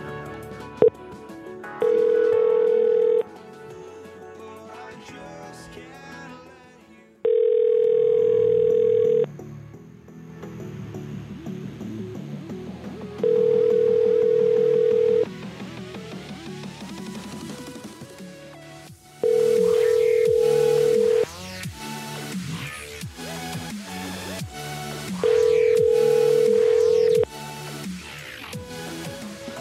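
A phone ringback tone repeats five times at steady intervals, each long ring lasting about a second and a half, with busy music playing underneath throughout.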